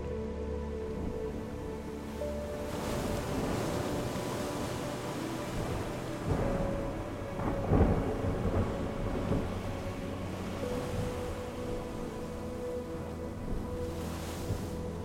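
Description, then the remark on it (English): A steady wash of rain and wind fills the scene, with low rumbles of thunder rolling underneath and a stronger crack around the middle. No one speaks. “Imagine the wind, the waves, the rain, the darkness.”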